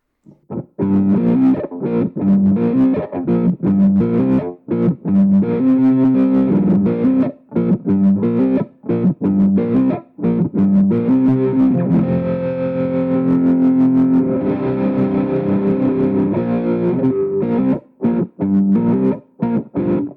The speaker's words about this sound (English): So this is going to have more of a, it already has some trem on it on the amp side, but it's a little bit more of a crunchy tone. This is actually what I wrote, the riff that I'm writing. I wrote it on this tone, on this preset.